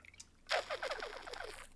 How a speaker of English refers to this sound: Little ASMR water. Probably sounds disgusting, but hey.